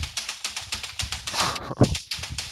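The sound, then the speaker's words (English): Rapid, uneven clatter of computer keyboard keys as someone types a Google search, a quick run of sharp clicks with a heavier thump partway through, like a harder key press, then more typing. “That's me typing Googling.”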